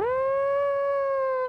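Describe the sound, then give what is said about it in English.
A voice imitates an air raid siren with one loud wail that swells up, holds a steady pitch for about a second and a half, then drops away. “Like some kind of giant warning or an air raid siren or something.”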